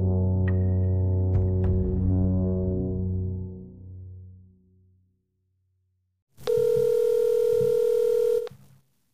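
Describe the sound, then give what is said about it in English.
A telephone being dialed on a hotel line: a lingering tone fades out, then after a short silence a loud, steady electronic phone tone sounds for about two seconds. No one speaks. “I'm calling you on the hotel phone, leaving you this message.”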